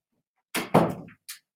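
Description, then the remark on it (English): A door is shut with a short scraping swing, a solid thunk as it closes, and a brief latch click a moment later, with no talking. “I'm just going to shut the door because my wife is deciding to play her video really loud.”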